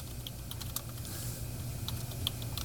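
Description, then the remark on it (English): Rapid, irregular clicking of keys on a computer keyboard, with a steady low hum underneath and no one speaking. “I can see him typing.”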